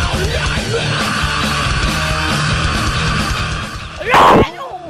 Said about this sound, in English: You asked me to scream and I did. You've got me out of the zone. I was really into it. Oh my God. I've burst everybody's eardrums.